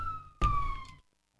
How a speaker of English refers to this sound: Got some sirens out there. All right. Anyway. Hope everything is okay.